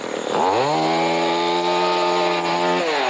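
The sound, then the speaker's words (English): Chainsaw Chuck's chainsaw in Derby revs up sharply from idle, holding a loud, steady buzzing whine for a few seconds before dropping back down, with no voices. “Not Chainsaw Chuck again.”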